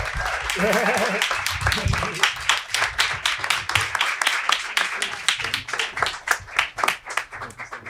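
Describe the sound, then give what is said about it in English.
A crowd applauds to thank Stacy Davis Gates, with dense, steady clapping for several seconds, scattered cheers and a brief voice calling out over it early on. “And with that, everybody, make one more round of applause and thank you to Stacy Davis Gates.”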